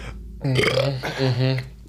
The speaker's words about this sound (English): Yeah, the burps are awful. Just prepare for that, and they keep coming.